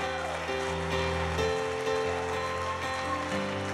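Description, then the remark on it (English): Steady, dense audience applause, a continuous crackling patter of many hands clapping, with sustained musical tones playing underneath throughout. “Give them a hand clap as they go back there.”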